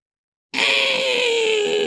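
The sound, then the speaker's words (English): A voice imitates a fox with a sudden, loud, high-pitched squealing whine that starts abruptly after a short silence and holds steady, pitch sagging slightly, until the end. “He makes a little fox noise.”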